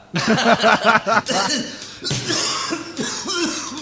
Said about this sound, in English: So you do hear a little coughing there. So David Warbeck's character, Pike, one of his quirks is that he coughs constantly and sucks on a puffer a lot.